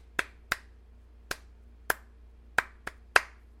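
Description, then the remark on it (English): Seven sharp hand claps in an uneven rhythm, clapped as an attempt at SOS in Morse code, some spaced apart and a couple bunched together near the end, crisp against a quiet background with no talking. “I was just clapping.”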